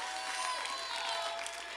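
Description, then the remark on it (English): An audience clapping their hands in praise to the Lord, a dense, steady wash of many hands with no distinct individual claps, holding an even level throughout, with faint crowd voices mixed in. “Clap your hands to the Lord and give God.”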